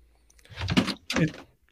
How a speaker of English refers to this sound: Knocking stuff off my desk.